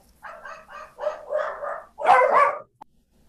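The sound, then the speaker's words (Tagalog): Dogs bark in a quick series of sharp yaps, several in a row, then a louder burst of overlapping barks before stopping, with no talking. “Sorry, nag-ano lang ako kasi nag-bark yung mga aso ko eh.”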